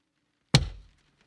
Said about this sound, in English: Then I heard it again. Tapping on the van window.